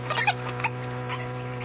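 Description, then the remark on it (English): A capuchin monkey named Chi-Chi gives a quick burst of high, chirpy squeaks and chatter, then one more short squeak, over a steady low background hum. “Those Capuchin monkeys. They want to imitate every new thing they see.”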